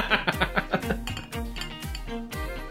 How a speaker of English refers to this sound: Ooh, oh, yeah. The glug, glug, glug. And the bubbles.